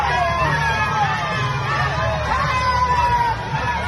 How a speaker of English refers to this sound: this is a video in Miami at a shopping district or something. It's just a bunch of lunatics walking in front of cars, yelling, twerking in the street.